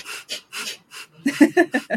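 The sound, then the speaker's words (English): A woman breathes out forcefully through her nose with her mouth closed, pumping her diaphragm: about ten sharp puffs in a steady rhythm, fairly loud, speeding up and growing stronger toward the end, with no talking. “but for those of you who can't see what she's doing, she has her mouth closed and she's breathing out of her nose only. And it's almost like pumping your diaphragm kind of right as you breathe out.”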